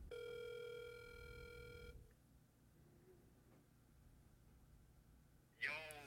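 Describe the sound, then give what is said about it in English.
A steady electronic phone ringback tone sounds for about two seconds while calling a friend, followed by a quiet, hissy line before a voice abruptly picks up near the end. “All right, I'm calling him.”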